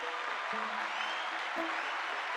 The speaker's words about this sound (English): And now it's time for the big question, which comes this time from Rosemary. So let's give Rosemary a round of applause.